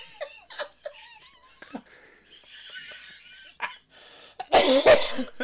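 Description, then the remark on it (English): A person coughs hard, a couple of loud, rough bursts near the end, after some quieter throaty vocal noises and light laughter-like sounds. “Oh God, you got Discipline Daddy cough.”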